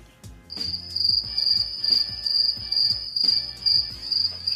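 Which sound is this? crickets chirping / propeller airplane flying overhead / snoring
crickets chirping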